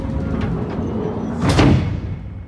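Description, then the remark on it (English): A heavy engine room door on a base, closed by squeezing a switch, rumbles as it slides along, ending in a loud, booming thud as it shuts, then a fading low reverberation. No voices are heard. “the last thing I see before the engine room door closes is Andy falling into Lloyd's arms”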